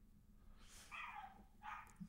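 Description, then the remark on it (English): Dogs barking in two short bursts, somewhat muffled, against a low steady background hum with no one talking. “I feel like your dogs what's going on over there, dude?”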